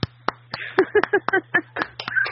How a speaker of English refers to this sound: Only two of us clapped.